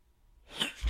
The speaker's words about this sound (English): Oh, that's my first sneeze on the show.